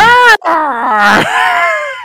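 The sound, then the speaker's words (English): A loud, primal, scary growl from the cartoon character Mumm-Rana, a harsh snarling vocal cry that breaks off briefly after the first burst and then surges again into a longer, strained snarl. “Like, she does this primal, scary growl thing that, like, she's about to, like, rip them to actual shred.”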